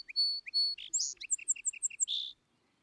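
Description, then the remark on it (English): A song sparrow sings a short, bright phrase from a garden fence or hedge on a bright, still March morning: a couple of clear whistled notes, a rapid jumble, then a quick run of even, repeated chirps ending abruptly, with no other sounds. “And can there be anything more fresh and pleasing than this first simple strain heard from the garden fence or a near hedge on some bright, still March morning?”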